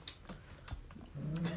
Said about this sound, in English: What's wrong with your dog? Okay, down here, buddy.